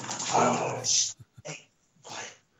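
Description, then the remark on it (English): A dog barks in a few rough, noisy bursts: one long harsh bark, a couple of short clipped yaps, then another bark after a brief pause. “Dogs are signed to rest. Turning into Cujo.”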